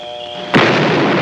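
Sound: explosion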